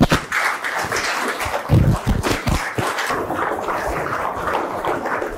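A crowd applauds steadily for several seconds, a dense wash of many hands clapping at once with a few louder individual claps standing out early on.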